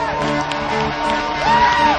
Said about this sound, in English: Let's give him a great clap, church. Come on now.